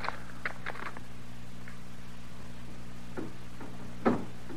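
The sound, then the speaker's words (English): A door rattles in its frame with a few irregular, clattering knocks spread out over a low steady hum, the last jolt louder and sharper than the rest. “Is it somebody working the door that way?”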